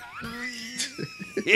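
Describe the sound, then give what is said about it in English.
Someone puts on a strained, drawn-out groan, then fakes a few short, rough coughs and throat-clearing sounds in quick succession. “I got an itch in my throat.”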